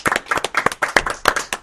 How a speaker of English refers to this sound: Yeah. Yeah, we'll give you a round of applause for that. Again.